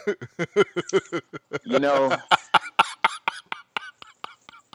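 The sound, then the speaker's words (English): A rapid fit of harsh coughing: a dense string of short barking bursts, broken midway by a strained, wheezing vocal gasp before the coughs resume. “It's tapping you down in your lungs. Cough”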